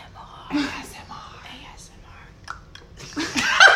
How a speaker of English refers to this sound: I have been slurping on my drink and chewing ice, so if that is in the background, you're welcome to There's this. So much in the background.